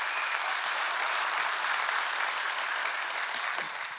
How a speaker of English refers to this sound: And a hello, a shout out to our family at SCI Chester in partnership with God Behind Bars. Can we show them some love? Clap for them.